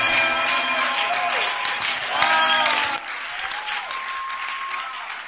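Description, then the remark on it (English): A church audience claps and applauds to welcome a preacher to share the word of God, in a loud, dense burst with voices calling out over it; the clapping thins and fades after about three seconds while some vocal sounds linger. “Please now, with a joy and with a clap, let's welcome God's servant to share the word of God with us.”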